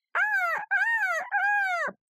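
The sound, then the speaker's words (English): Someone imitates a generic bird call: three loud, drawn-out squawking cries in a row, each rising then falling in pitch, with brief gaps between them and no other sound. “It's kind of general bird.”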